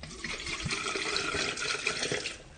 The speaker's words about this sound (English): Now I'm going to empty some water out.